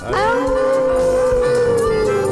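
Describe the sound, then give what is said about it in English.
Several people howl together in imitation of dogs, howling at the Moondog on a radio host's Moondog Show after a count of three. A loud, sustained, wavering human howl that holds steady and slowly falls in pitch over a couple of seconds. “On the count of three, I'm going to howl at the Moondog.”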